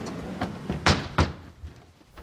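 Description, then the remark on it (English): A sliding door is thrown open fast in a Korean drama scene as a young man walks into his mother's room, giving two sharp rattling bangs with a few lighter knocks around them. No one speaks. “Going back to the conversation line by line, first we heard the sliding door bursting open”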